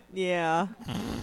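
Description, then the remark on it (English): A dog, the overlord dog, lets out a short growl with a strained, whiny edge that lasts about half a second, followed by a rougher, breathy rumble. “Amaralai's also about to get crushed by the overlord dog.”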